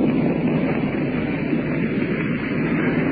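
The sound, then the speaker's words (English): A steady, loud drone of German warplane engines overhead in a cloudy night sky on June 6th, attacking the shore and convoys, a continuous rumbling roar with no pauses and no voices. “These planes you hear overhead now.”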